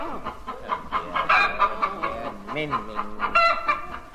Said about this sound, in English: hold this chicken. Be careful, she's...